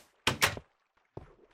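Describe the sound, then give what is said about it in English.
A door at the back of a new home opens with a loud, sharp double clack, then after a brief silence shuts with a duller thud. Both sounds stand alone, with no talking. “I, of course, very conveniently added a door to the back.”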